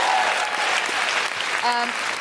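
A crowd applauds steadily, a dense wash of clapping at even loudness throughout, with a brief tonal sound like an instrument being tuned rising out of it near the end.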